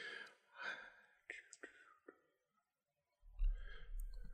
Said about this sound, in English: Rolling damage dice. No, I'm rolling a spot hidden roll.